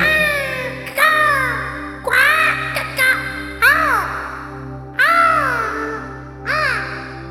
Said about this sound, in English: You look into the sky. You see the birds. You hear them go.